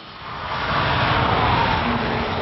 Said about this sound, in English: What you hear is the roar of Nissan's passion for performance. What you see is its ultimate physical expression, the all-new Nissan GT-R.